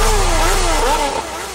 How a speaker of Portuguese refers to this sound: Mais de 40 motos acelerando a radial. Mais de 40 motos acelerando a marginal.